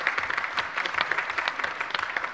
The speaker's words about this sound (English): Yeah, give him a round of applause.